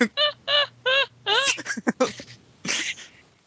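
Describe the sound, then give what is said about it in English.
A run of loud, nasal seagull squawks: four short evenly spaced cries, then a wavering, gurgling call trailing into rougher noise, with no other sounds. “It was Seagull, apparently.”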